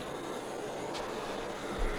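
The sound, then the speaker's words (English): A soft, steady sizzle of cannabis concentrate being heated on a hot surface right at the microphone, a continuous crackly hiss that holds even for two seconds with one brief brighter crackle partway through. No voices are heard. “Maybe you'll hear a little sizzle on there.”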